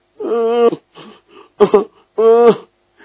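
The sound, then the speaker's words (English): A voice makes exaggerated, drawn-out yawning sounds: two long, loud, moaning yawns separated by a few short breathy vocal noises. “Yawning.”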